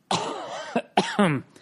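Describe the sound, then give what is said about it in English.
A loud bout of raspy coughing, two harsh bursts with a brief catch in between, dry and throaty with a rough, phlegmy edge. “So you wouldn't know by my coughing.”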